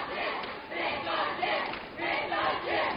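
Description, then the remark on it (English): The Trojan student cheering section roars loudly and continuously at a game between Owosso and Corona, a dense wall of crowd yelling and chanting that surges in waves with brief dips between rising shouts. “Trojan cheering section very loud here tonight.”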